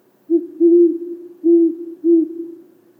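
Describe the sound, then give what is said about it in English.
A great horned owl (Bubo virginianus) gives a deep, low hooting series: a short hoot, then a longer one and two more steady hoots, clear with no other sounds. “For now, let's look at the great horned owl, Bubo virginianus.”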